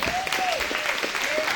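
A dense round of applause from a crowd, a steady wash of many hands clapping at once, with a brief rising and falling whistle or whoop riding over it.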